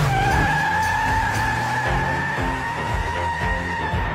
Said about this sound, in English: I'm having a fun time driving my car, okay?